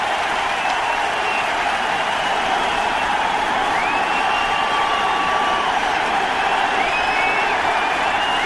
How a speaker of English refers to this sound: For tonight's ceremonial first pitch. And please welcome the President of the United States. So George Bush is on the mound and people are cheering.